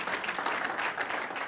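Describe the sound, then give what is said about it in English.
A crowd claps steadily, a dense wash of many overlapping hand claps with bright, crackling texture and fairly even loudness, with no voices standing out. “Clap your hands, do something, breathe.”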